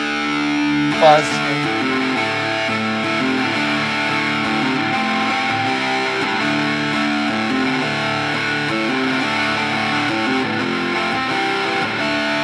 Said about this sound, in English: Okay, so now we're gonna put on. We have a Mojo Hand Effects Colossus. It's kind of distortion, kind of fuzz.